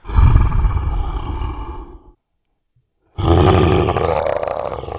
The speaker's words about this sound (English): The boys stood in silence in the darkness for a few seconds when they heard the low, guttural growl which turned into a high-pitched scream.